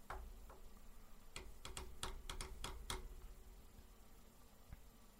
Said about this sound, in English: You're still typing.